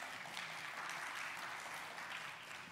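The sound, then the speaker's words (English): An audience applauds its worship band steadily, a dense wash of many hands clapping at an even, sustained level with no voices rising above it. “Let's give a round of applause for our worship band.”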